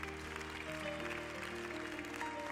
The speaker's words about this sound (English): Give the Lord a great big clap of praise.